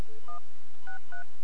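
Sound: telephone keypad dialing tones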